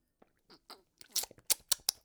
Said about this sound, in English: Let me take one more sip of this Lemsip over here.